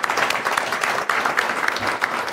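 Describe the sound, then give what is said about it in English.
Steady applause from an audience welcoming a guest speaker, a dense continuous patter of many hands clapping at moderate volume, filling the whole moment without any voices. “Give him a warm round of applause.”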